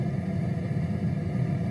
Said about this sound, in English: you hear that underlying like hum? That to me feels like it's the dryer.